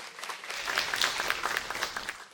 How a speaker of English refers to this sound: We can clap for Kevin, that's fine.